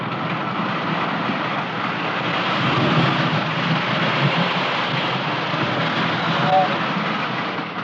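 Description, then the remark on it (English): A toy electric train runs steadily along its track in a shop layout with automatic signals and switches, producing a continuous, fairly loud whirring rumble with a faint rattling texture that holds even throughout without pausing. “electric trains, huh? Must be money in it. Look at those signals there and switches.”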